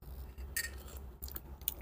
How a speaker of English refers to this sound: and I'll mix it with my sea moss, which is what I'm sipping on today. So let me check if it's still scorching hot. Hold on.